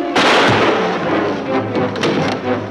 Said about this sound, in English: Chris, Clark, Lois, Perry, and Jimmy pursue him through the base corridors as he fires his gun wildly. Clark's hand secretly prevents a bullet from hitting Chris.